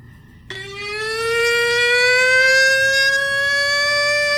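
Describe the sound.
A person imitates a pig in a contest with one long, loud, high-pitched squeal that starts abruptly, then holds and slowly rises in pitch for about four seconds, with no talking.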